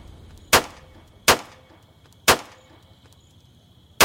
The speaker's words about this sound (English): Then she heard the gunshots.